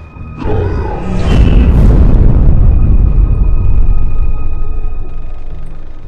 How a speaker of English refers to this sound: The fires roared and raged, the crackling sound of unforgiving embers almost deafening.